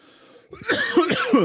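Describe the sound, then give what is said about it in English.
A person clears their throat, a rough, gravelly rasp that rises in a couple of quick pushes over about a second, with no talking during it. “Clearing my throat.”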